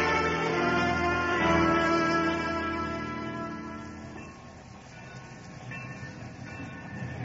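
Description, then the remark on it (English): A train pulls in to Chandrapur station, its heavy rumble and droning mechanical tones gradually easing off, with a thin high squeal creeping in near the end as it slows. No voices. “There, the train reaches Chandrapur now.”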